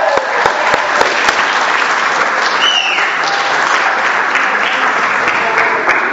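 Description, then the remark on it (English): A large church audience applauds steadily and loudly for the children after their Christmas play about the Lion King, the dense clapping going on without pause, with a few scattered whistles and cheers rising above it. “Round of applause to the kids.”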